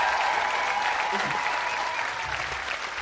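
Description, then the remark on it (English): A large Carfest festival audience claps and cheers for sporting guests on stage, including Matty Lee, Paula Radcliffe, Steve Cram and Victoria Pendleton, in a dense, steady roar of applause that stays loud and unbroken for the full three seconds, with no voices speaking over it. “Can we give them all a massive, proper Carfest huge cheer?”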